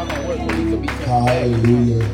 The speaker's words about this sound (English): Give God the loudest hand clap and praise that you know. You can do better than that. Lift him up. Exalt his holy name.